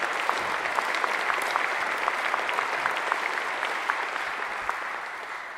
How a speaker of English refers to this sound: There's a little applause up front as the audience welcomes the conductor to the stand.